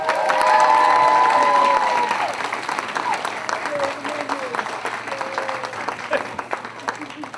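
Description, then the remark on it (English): A crowd bursts into applause and cheering, loud at first with excited whoops and shouts, then settling into steady, dense clapping that carries on throughout. “Okay, so to all of these lovely people, a round of applause.”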